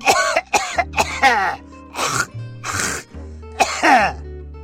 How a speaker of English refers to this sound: We lay there a while longer, holding hands in the cool tropical night breeze, watching the shimmering lights of long dead stars, and pretending we weren't listening to an old man drowning in his own phlegm.